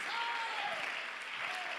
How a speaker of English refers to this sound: We gotta appreciate and applaud everybody.